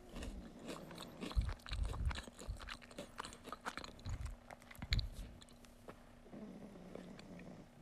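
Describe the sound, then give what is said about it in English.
Crunchy chewing of Cheez-It cheese crackers, with bursts of crisp bites and grinding mouth noises over several seconds, then fading to quieter chewing with a faint steady hum behind it. “I'm eating Cheez-Its. Okay, I need it. I say literally a lot, and like so much. Yeah, okay, chewing warning.”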